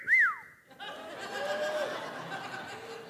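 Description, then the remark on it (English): A single short, loud whistle, used while fishing to signal a fish on the line, swoops up and then falls away, followed by a burst of audience laughter and murmuring that carries on to the end. “If you're fishing, you hear that whistle, that means fish on.”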